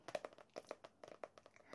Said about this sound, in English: Shuffle the deck. In fact, should we shuffle it now? I'll shuffle the deck now and then we'll lay out the tarot spread.